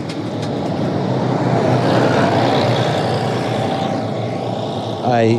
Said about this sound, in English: Hang on a second, it's a school bus is about to go past, so just wait a second for this bus to go past.